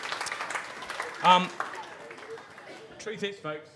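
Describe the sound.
A crowd applauds a guest after an interview in a steady, dense patter of claps that gradually thins out, while a voice speaks briefly over it.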